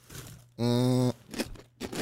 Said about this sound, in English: No, but she's, first of all, everybody makes chewing noises. No, but first of all, I can hear the mastication in there. But that's fine. There it was. Right there. You just opened your mouth.